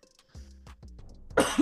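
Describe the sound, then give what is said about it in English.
A loud cough bursts out near the end, preceded by a few low, throaty vocal sounds; no words are spoken. “Not the cough.”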